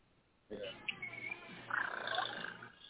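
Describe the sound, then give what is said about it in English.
A woman imitates a cat's purr with a steady, rolling throaty sound that starts after a brief pause and carries on for a couple of seconds, rising slightly toward the end. “she should be purring in a minute.”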